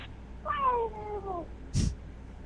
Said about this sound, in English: I couldn't make that out. Did you hear it? I heard a cat meowing. Oh yeah. I'm sorry. That's his cat who thinks it's a dog.